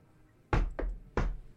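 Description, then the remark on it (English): Three heavy, loud knocks on a door aboard a ship, coming from the north door at the top, with a slightly uneven rhythm: two quick raps followed by a third after a short pause, with no voices. “coming from the north, the door at the top.”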